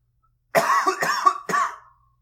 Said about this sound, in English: I'm not editing out that cough.